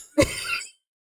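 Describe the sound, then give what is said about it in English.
A single cough, a sharp raspy burst that trails off over about half a second, with no talking around it. “Can you please stop coughing?”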